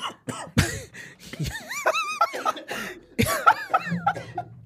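A person coughs hard in several harsh, explosive bursts, loud, with strained, wheezy gasping and groaning sounds between the coughs.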